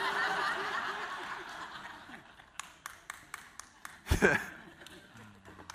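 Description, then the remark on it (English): An audience murmurs and chuckles, then a few scattered hands clap sparsely, about a handful of separate claps in a thin, uneven patter ending with one louder burst before fading. “That's all the old people clapping.”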